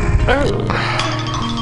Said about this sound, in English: Yeah, it's my phone just warning me about open mics. It does that.